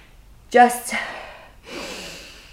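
A deep breath drawn in sharply, almost a gasp, followed after a brief pause by a long, airy exhale, with no talking.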